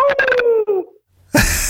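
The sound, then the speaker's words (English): A guest imitates a dog howl as a closing howl, a brief, wavering wail that slides downward and fades out. After a short silence comes a sudden burst of noise. “And, well, we have our guests give us a closing howl, okay? You know, your best kind of dog howl that you can do?”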